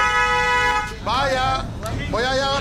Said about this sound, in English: But we, like, could not get an interview in because people kept stopping and honking their horns.